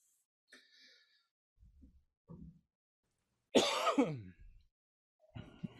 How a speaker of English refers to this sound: Sorry, had a little nice little cough there.